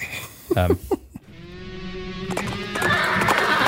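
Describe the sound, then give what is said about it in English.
A horse gives a short, shaky whinny, then hooves clip-clop steadily over a rumbling background, the clopping growing louder and busier toward the end. “Hold your horses and pull your carriage to the side of the road.”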